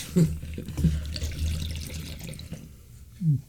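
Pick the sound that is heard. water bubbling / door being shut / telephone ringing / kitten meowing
water bubbling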